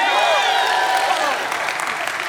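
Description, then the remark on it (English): A church audience of kids and adults claps and cheers loudly in response to the cue word "Toothpaste," with overlapping high, excited voices whooping over a steady wash of applause that lasts throughout and eases off slightly toward the end. “So when you hear those words, not just kids, but adults too, you gotta like clap and cheer and like get into it, okay?”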